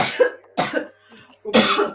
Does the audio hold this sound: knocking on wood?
no